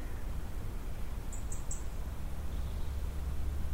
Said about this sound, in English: You can hear the birds in the trees. It's very peaceful.